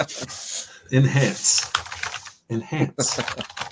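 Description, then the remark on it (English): Rapid clattering keystrokes from typing on a cheap Bluetooth keyboard in uneven bursts, with a voice murmuring faintly underneath. “I had a cheap Bluetooth one, so that is my bad. I will mute my mic next time I'm typing.”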